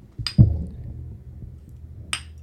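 Two bright, glassy clinks about two seconds apart as two people tap their beer bottles together in a toast, with a dull thump just after the first one and no talking.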